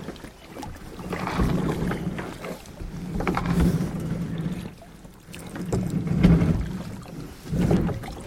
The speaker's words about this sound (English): Let me get the kayak in the water first,